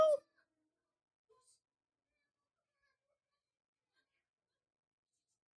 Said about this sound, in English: Stupid ass cat.